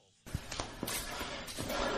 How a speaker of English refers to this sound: Then this second locker bang is what we get, and then we'll tell the sauna story.